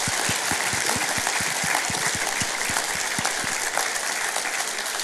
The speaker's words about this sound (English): Can we give them a huge clap this morning?